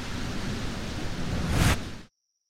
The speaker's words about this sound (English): Where did that storm come from? Where indeed?